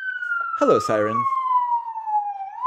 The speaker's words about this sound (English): Hello, siren, my old friend. Same old sirens. You've come to drive by us again. And we all hope everyone's all right.